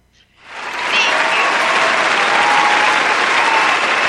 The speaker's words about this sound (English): Oh, there's the applause. Thank you, folks.